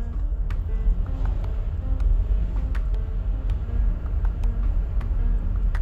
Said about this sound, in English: You probably hear the car. Tires.